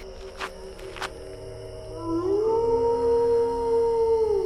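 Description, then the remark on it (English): A long, rising wolf howl swells in after a couple of faint clicks, holding a steady tone with a second voice layered beneath it, clear over a low background hum; the wolves are going after cattle. “These wolves are into our cattle again!”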